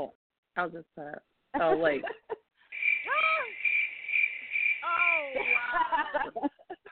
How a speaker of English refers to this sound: That's all right, because the crickets are showing me love.